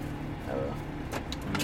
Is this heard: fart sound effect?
no